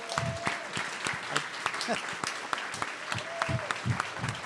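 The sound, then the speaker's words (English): Sustained audience applause for the panelists and speakers at an Alaska Common Ground event, a dense crackle of many hands clapping at a steady loudness, with faint murmuring voices and a brief high tone or whistle mixed in. “And I'd like to hear a big round of applause for all our panelists and speakers.”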